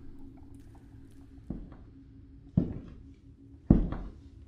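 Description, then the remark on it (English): A cellar lock being slowly turned: three heavy mechanical clunks roughly a second apart, each louder than the last, over a low, steady background hum with no voices. “Then, the cellar's lock slowly started to turn.”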